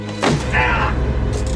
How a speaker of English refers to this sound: Oof. She slammed the box on his legs. Yeah, the box of paper. And, yeah. 500, sheets of heavy GSM paper is a heavy thing. Isn't it?